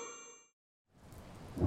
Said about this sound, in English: Why is it raining again? I must find a place to shelter from the rain.